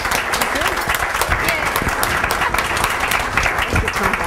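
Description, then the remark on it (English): A steady round of applause from an audience for a panel at the end of a conversation event, dense continuous clapping that holds at an even loudness for several seconds with no break. “Thank you all so much, and I want to give a big round of applause to our panel.”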